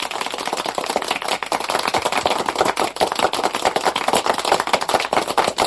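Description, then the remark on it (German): Steady, dense audience applause at the SEO Campix event lasting several seconds, a crackling wash of many hands clapping at once at an even loudness, with no voices standing out. “Aber der Applaus gebührt natürlich dem SEO-Nauten.”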